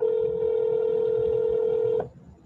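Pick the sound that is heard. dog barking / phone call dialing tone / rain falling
phone call dialing tone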